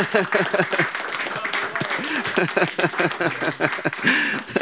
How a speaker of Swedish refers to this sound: Applåder!